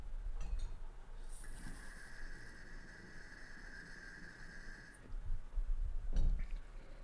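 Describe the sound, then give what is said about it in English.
Water bubbling through a glass rig during a steady draw, with the carb cap taken off for more airflow: a thin airy whistle riding over rapid gurgling for several seconds, with small glassy clicks before and after. “I gotta pull on it again for the camera. I'll take this carb cap off this so I have a little more airflow.”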